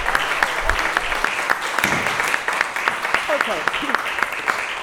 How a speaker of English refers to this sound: So can I suggest we just give her a clap?